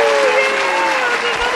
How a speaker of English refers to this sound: Good job, everyone. Hold on. Quick round of applause all around.